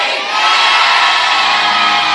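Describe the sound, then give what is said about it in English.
A loud audience at an evening church service erupts in sustained shouting and cheering, many voices whooping together at full volume for a couple of seconds, dense and continuous with no single voice standing out. “And the saints of God shouted their best.”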